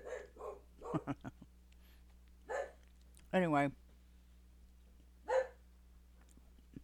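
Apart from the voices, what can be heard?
dog barking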